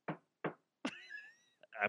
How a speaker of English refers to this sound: I banged the shit out of that wood.